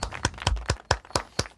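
A brief round of applause: about seven sharp, crisp hand claps in a quick, fairly steady rhythm, moderately loud, with no voices over them.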